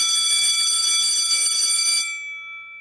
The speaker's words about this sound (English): I think the alarm goes off and that the alarm signifies that lunch is over. Yeah, a bell rings. A bell rings. The alarm goes off. Ring the alarm.